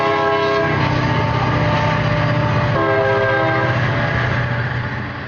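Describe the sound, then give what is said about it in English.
A train horn blares loudly and steadily over the rumble of a passing train, its chord shifting pitch partway through as the train roars by. “The train silenced the governor for less than a minute.”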